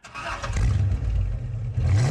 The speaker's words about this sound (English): And so if you listen to number 6, which is just a car startup.